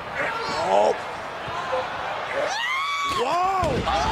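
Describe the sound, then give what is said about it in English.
At a wrestling event, an opponent of the Bludgeon Brothers lets out a loud, wavering scream during a body slam, the pitch rising and falling in drawn-out bursts over steady crowd noise, with dull impact thuds mixed in. “I watched this scream three times. Did you hear the scream?”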